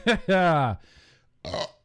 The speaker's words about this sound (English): Sorry, more burp life.